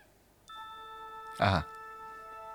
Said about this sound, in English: Star Trek opening chime. I wonder what that is.